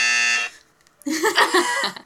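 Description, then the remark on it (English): A loud, harsh game-show buzzer from a buzzer app blares for about half a second, then cuts off; after a brief pause, people burst into laughter and animated talk. “We got a buzzer app”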